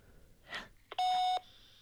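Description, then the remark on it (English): A single sustained electronic beep of a person's answering machine, heard over a cellular phone call on speakerphone, loud and steady for about half a second after a brief breathy noise and a click. “So that was that person's answer phone.”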